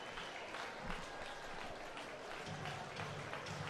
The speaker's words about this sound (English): The crowd still in attendance here at Russo Park, standing and clapping.